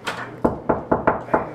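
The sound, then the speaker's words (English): A hotel room door being opened by a man in sunglasses and a towel, heard as a quick series of five or six solid thumps in an uneven rhythm, fairly loud, with no voices. “He opens the door and there are two cameras pointing at him.”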